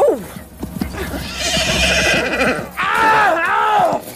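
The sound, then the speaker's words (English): A horse whinnies loudly as it runs wild and bolts off across the fields, its shrill, wavering neighs rising and falling over a busy clatter of hooves and rustling movement. “his horse ran wild and bolted off across the fields”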